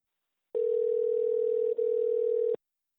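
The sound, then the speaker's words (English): An outgoing phone call to a friend ringing before anyone answers: one steady electronic tone held for about two seconds, clear, with no voices. “So without further ado, let's call Mark.”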